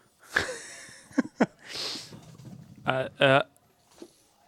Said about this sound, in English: What the fuck are you doing? I'm smelling it. That's weird. No, I'm not. Well, I mean, obviously I am, but I'm just...